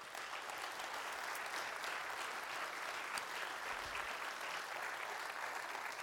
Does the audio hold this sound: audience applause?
yes